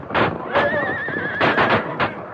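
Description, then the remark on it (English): A horse lets out a long, wavering whinny, mixed with sharp bursts of commotion that may be hoofbeats or shouting, all packed into a couple of hectic seconds. “Get the horses.”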